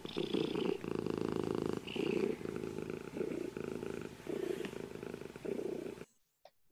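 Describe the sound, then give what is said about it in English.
A male domestic pet cat purrs steadily, its low rumbling throb pulsing in a continuous rhythm for several seconds before cutting off into near silence. “I'm just glad I have a cat right now.”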